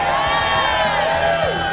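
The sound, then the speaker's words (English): A large crowd at a political rally cheers in a steady, flat wash of voices, loud but lacking peaks or excitement, sounding dutiful rather than enthusiastic, with a few shouts rising briefly out of the din. “Wow, that's not an enthusiastic crowd there. That's got the going through the motion sound to it.”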